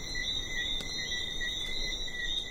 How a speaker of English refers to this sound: And when it gets dark out, it's so tranquil. There's just the sound of the breeze and these little frogs that come out at night and chorus all over the island.